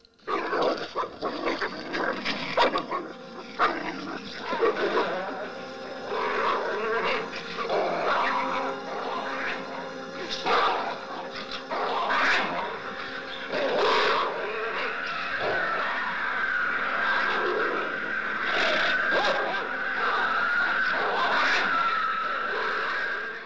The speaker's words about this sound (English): So just dogs fighting and just some ethereal spirit like talking between the two of them.